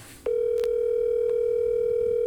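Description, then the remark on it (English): The ringing tone of an outgoing phone call sounds once, a steady electronic hum held for about two seconds, loud, with no voices over it. “Now, if he don't pick up the phone, I'll...”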